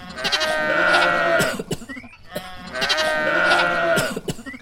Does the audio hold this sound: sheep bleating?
yes